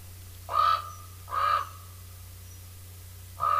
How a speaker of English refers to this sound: Here's a common raven.